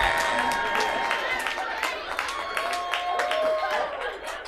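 An award-show crowd cheers as actor Adam Pally is introduced, with scattered claps and a few high whoops and whistles rising over the noise, loud and continuous for the whole stretch.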